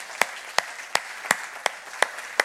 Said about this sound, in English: So I want to encourage you guys, those of you that are serving with children and youth at any capacity, would you just stand up right now? In any capacity, go ahead and stand up. And let's give these guys a round of applause.